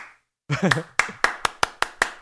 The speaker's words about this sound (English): I defend, yes, keep clapping.